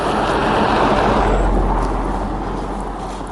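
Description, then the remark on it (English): A car rolls past outdoors on a still, windless, chilly autumn day, its broad rushing road noise and low rumble swelling loud, then slowly easing off as it moves away. No one speaks. “Car coming.”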